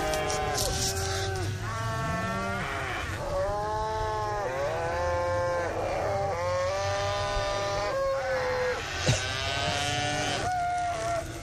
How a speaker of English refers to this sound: Just follow the sound of the cows.